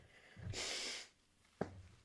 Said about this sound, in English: Blow your nose. Harder.